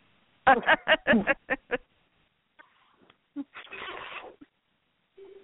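A quick series of short, harmonic chirps and trills from a cat at play in a rapid burst, followed by a scratchy rustle and a brief low call, clear.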